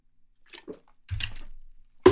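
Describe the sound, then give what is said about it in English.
Water is poured into a glass, with a short liquid rush and splash, followed by soft swallowing sounds as it is drunk. No one speaks. “So just follow my lead and drink some water.”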